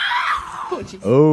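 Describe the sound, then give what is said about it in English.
Two cats caterwaul at each other: a long, high, drawn-out wail slides downward, then a lower, harmonically rich moan swells loudly in response. “I know one took a swat at the other one, but then they went right back to screaming.”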